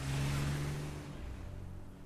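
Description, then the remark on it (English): A car engine hums loudly with a steady low drone, then the sound thins and recedes as the car is driven away from a motel and the nearby town, leaving a fainter rumble at the end. “The gravekeeper was quiet in its new home and didn't stir as I drove away from the motel and the nearby town.”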